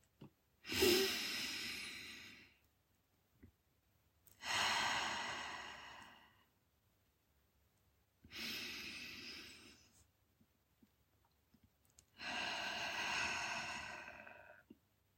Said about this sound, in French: Prenez quelques respirations profondes par le nez et expirez par la bouche et laissez-vous vous détendre et vous sentir calme.